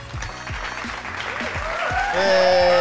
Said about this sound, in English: Give your hands round of applause.